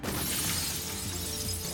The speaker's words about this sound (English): I break the glass.